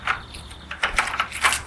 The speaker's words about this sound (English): That's odd. Keys don't seem to fit. Maybe the lock's seized up.